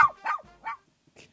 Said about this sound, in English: Hey, Bo, get off my leg. Hey, stop it, you dumb mutt.